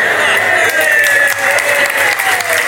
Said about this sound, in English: Now, from that deafening cheer and thunderous applause, I take it that I have your full backing and support.